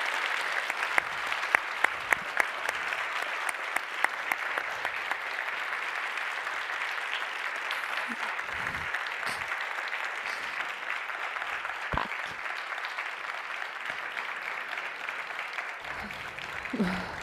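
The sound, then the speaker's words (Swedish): Sustained audience applause for Isabella Löwengrip after an on-stage conversation, a dense wash of many hands clapping steadily for the whole stretch, with a few sharper individual claps standing out early on. “Så en stor applåd för Isabella Löwengrip.”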